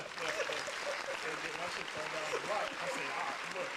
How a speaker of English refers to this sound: Round of applause.